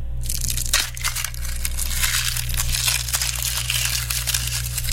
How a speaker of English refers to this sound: that secret sound was peeling an onion